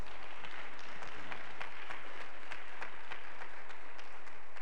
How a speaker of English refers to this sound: Thank you again. Let's have another round of applause for our veterans.